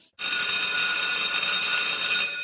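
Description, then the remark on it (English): A loud, bright bell rings continuously, like a phone ringtone, with shimmering high metallic tones that start abruptly and hold steady for about two seconds with no one talking. “If you need that as a ringtone for your friend, I can pass that on.”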